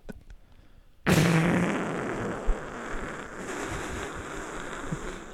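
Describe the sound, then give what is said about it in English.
After a moment of quiet, someone blows a loud raspberry imitating a fart, a buzzy, sputtering noise that starts abruptly and drags on for about four seconds. “How do you make fart noises?”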